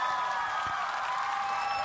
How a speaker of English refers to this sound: I'm looking for my applause. Where's Stan applause?